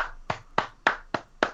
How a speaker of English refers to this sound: Why are you clapping?